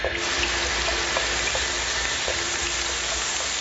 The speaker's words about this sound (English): I've rerouted the log flume to douse the flames. We're saved! Who'd have thought logs would put a fire out?